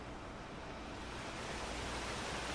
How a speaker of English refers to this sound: And keeping count just inside as you continue listening to the sound of my voice, to the nice calming sounds of the ocean waves.